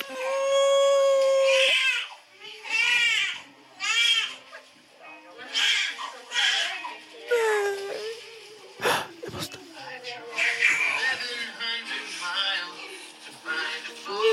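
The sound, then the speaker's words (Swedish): A newborn baby cries loudly just after being born, in a series of high, strained wails separated by short breaths, with other voices faintly audible near the end. “Och du vet, man hör bebisen och bara skrika.”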